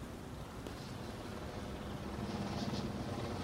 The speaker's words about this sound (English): Helicopter. Man-made.